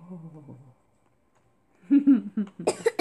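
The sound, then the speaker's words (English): A child's voice briefly, then a pause, followed by a cluster of harsh coughs from the child in quick succession, loud and breathy toward the end. “Cover your mouth when you cough this.”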